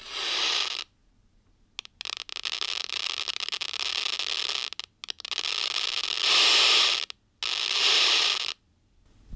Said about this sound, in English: And these things, because they're sitting in an incubator deprived of any inputs, they tend to develop seizure-like activity. And this is what it sounds like when you take those recordings and hook them up to a loudspeaker.